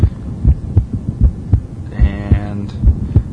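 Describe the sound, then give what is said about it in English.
A woman's amplified heartbeat, heard in her stomach, thumps steadily in a regular rhythm, each low pulse booming loud over a murky hum, with a brief rising tonal whine partway through. “No, that's her heart. That's her heartbeat. In her stomach?”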